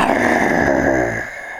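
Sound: tiger roaring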